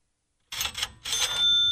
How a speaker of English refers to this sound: Okay, so I get the cash register sound every single time somebody goes to my website. And this is the coolest thing in the world. All day long, I'm hearing cha-ching... cha-ching.